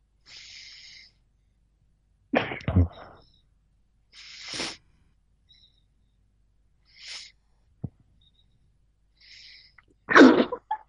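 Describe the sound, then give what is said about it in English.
Loud sneezes burst out twice, one early and one near the end, with short hissy breaths and sniffs scattered through the quiet gaps between them. Nobody speaks. “Bless you.”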